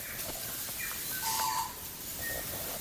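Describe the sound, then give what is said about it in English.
Several saddleback birds call in the background, a scatter of short whistles and chattering notes over steady outdoor ambience, fairly faint with no one talking. “So I think I can hear some saddleback in the background there.”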